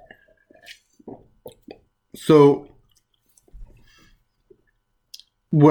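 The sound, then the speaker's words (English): Quiet sips and swallows of water during a water break, a few soft wet clicks and plops in a short sequence, with a man briefly speaking between and after them. “Because evangelicalism at its best, and what that word means, and also time for a water break.”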